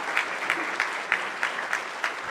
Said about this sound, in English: Thank you so much for that. And let's give God a hand clap for what they do. Thank you.